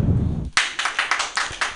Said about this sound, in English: So clap if you believe in astrology.